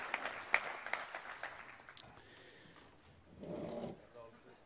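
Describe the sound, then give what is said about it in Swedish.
A burst of audience applause welcoming a guest, with dense, crackling claps for the first couple of seconds, then tapering off as a murmur of voices and a short spoken phrase rise beneath it. “Och så en stor applåd för en välbekant god vän,”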